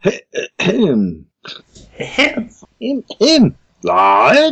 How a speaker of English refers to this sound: trying to clear his throat.